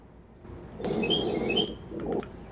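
High, thin bird chirps and tweets, a few quick calls, in a recorded and amplified take, sit over a steady hissing, breathy background that swells midway and then cuts off toward the end.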